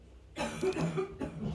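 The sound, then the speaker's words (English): An ill woman coughs a couple of times, harsh and chesty, as she walks past a door, in the background with no one speaking. “my mother is ill and is literally just walked past the door coughing like she is a chimney.”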